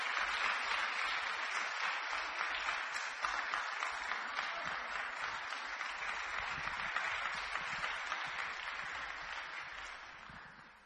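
A church audience claps hands in steady, dense applause as a woman is welcomed up to share her testimony, filling the whole clip at an even loudness, fading slightly at the very end, with no voices standing out.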